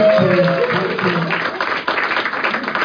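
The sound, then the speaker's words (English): An audience applauds with dense, steady, loud clapping that fills the whole stretch, with a few faint voices and a brief tonal whistle-like sound near the start. “Yes, give me a round of applause.”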